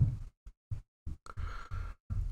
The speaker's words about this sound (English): Yeah. She's very loud. Stomping around the kitchen up there.